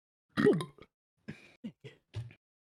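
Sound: burp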